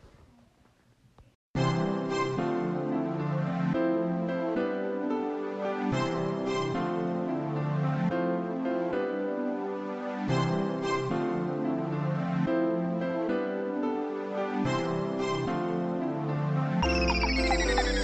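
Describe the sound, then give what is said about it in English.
A festive Christmas pop song intro kicks in after a brief quiet moment, with bright chiming bells ringing over a steady, bouncy rhythm. It is loud, with no voices. “which is called …”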